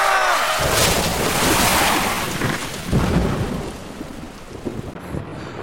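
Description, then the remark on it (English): Heavy rain roars steadily throughout at Ghost Ranch, with deep rumbles of thunder rolling underneath and a louder crack near the middle, like a storm. “But this week, when I finally get the okay to investigate at Ghost Ranch, it pours.”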